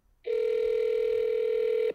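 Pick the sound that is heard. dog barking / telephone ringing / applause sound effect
telephone ringing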